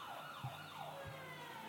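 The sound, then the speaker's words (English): A police car siren blares with rapid rising and falling wails that repeat steadily, accompanied by a low rumbling hum. No one speaks. “No crime has been committed there, but yet these cops are like blaring their sirens and lights.”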